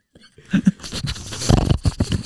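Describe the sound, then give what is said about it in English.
A person mimics a dog snuffling with a quick run of breathy sniffs and snorts, uneven and wet-sounding, lasting about two seconds with no words. “That snuffling sound.”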